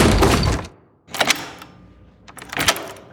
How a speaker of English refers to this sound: Oh, stinking no! The lousy door just slammed shut behind us! And locked all by itself.